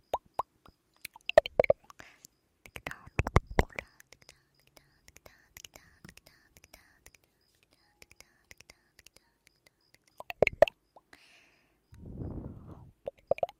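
Wet, sticky ASMR ear-eating mouth sounds: scattered clicks and smacking pops in irregular bursts, with soft breathy whispering noise, quiet stretches between, and a louder rustling swell near the end.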